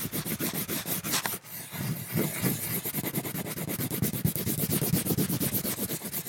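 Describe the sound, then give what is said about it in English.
A crayon scribbles rapidly across paper, a steady run of scratchy, rasping back-and-forth strokes with a brief pause early on, fairly loud and continuous with no voices. “Sound number three was a crayon scribbling on a piece of paper.”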